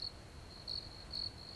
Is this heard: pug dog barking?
no